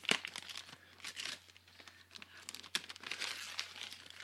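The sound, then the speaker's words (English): Wrapping paper crinkling and rustling in busy, irregular bursts, with a few sharper tearing rips as a Christmas present is opened; no talking. “The one that almost is the exact same wrapping paper he had.”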